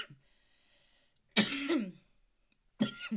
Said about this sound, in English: I cough so much, it's ridiculous, but it's fine because I'll just edit this out. No, it's authentic. It's real.